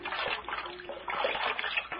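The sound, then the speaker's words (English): Cold water splashes and sloshes continuously from a pan, a busy, wet spattering with small surges, as the water is used to bathe an injured old man's head. No voices. “Now, this cold water will help that head.”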